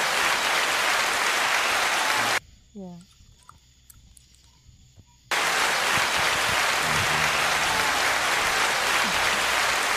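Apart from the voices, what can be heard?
applause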